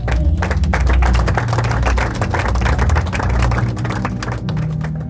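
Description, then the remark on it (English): An audience claps for the Lord in a loud, dense burst of steady applause that lasts several seconds, with a low sustained musical drone underneath and no talking. “Give the Lord a clap.”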